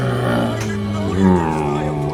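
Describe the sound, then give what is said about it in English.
In an Indiana Jones film scene, a biplane's engine starts up with a steady, droning whine and layered low hum after it detaches from a Zeppelin airship. Its pitch bends upward briefly midway, and faint clunks of the detaching sound early on. “Sorts of clunking of the biplane detaching and the engine starting up, the engine kind of whining.”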